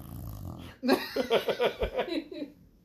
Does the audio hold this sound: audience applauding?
no